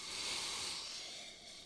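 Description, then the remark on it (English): A single long, breathy sniff as someone smells a glass of Nebbiolo, an Italian red wine: a steady airy inhale that fades slightly toward the end, with no talking. “I mean, give it a smell.”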